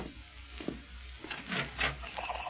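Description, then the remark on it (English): A wooden door opens with a rough, creaking scrape in several uneven bursts, the grinding strongest toward the end, over a low steady hum with no voices. “I've always heard the best way to see who's at the door is to open it and find out.”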